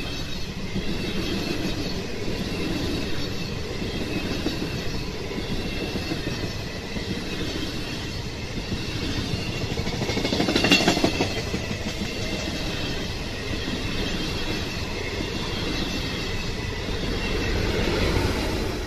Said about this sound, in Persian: دوازده ساعت قبل قطار سیاه رنگ میان درختان پاییزی پیش می رفت. ریل‌ها بدون هیچ پیچ و تابی مستقیم تا ساحل دوون کشیده شده بود.